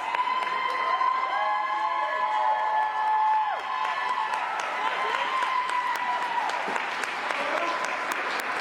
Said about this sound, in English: Okay, pause it real quick. Listen to all the applause.